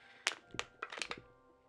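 A crumpling crunch sound effect made of about five sharp, crackly bursts in an uneven cluster, standing for a character's arm crumpling like a soda can in a tabletop role-playing game, then trailing off into a faint rustle. No talking.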